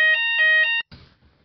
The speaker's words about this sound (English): Oh, no. Looks like we might have to have a little bit of a pause there, ladies and gentlemen. We have a fire alarm.